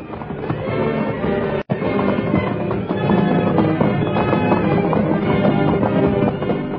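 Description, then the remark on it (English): A horse, a wiry little Indian pony, whinnies loudly as it loses its footing, its hooves scraping and clattering frantically over rocky ground. It is a dense, continuous scramble with a brief cut near the start and no talking. “Once, when Standing Bear's horse lost his footing, his master's life was saved only by the quick action of White Fellow, whose powerful shoulders pushed the wiry little Indian pony back to safety.”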